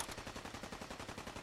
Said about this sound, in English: The gunfire is not distracting at all.